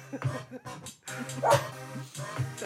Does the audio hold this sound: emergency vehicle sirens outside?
no